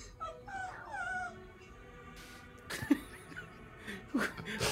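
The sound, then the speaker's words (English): A dog in a video being played whimpers in a few thin, high, wavering whines near the start, then goes quieter as two sharp, louder yelp-like bursts break through later, all fairly faint. “Dogs are smarter than we think. They're very empathetic.”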